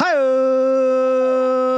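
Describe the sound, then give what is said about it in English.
A dog lets out one long, steady, high-pitched howl that rises briefly at the start and then holds a sustained tone for nearly two seconds, loud and alone with no talking. “Got the dog chiming in.”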